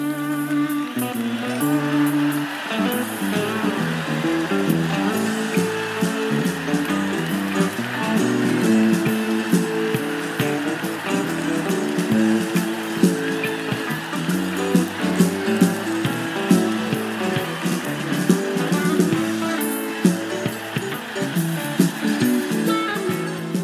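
A live band plays continuously in a concert from October 9, 1989, captured on an audience recording, while loud, steady fan noise, a hissing wash of crowd sound, runs under the music for the whole stretch.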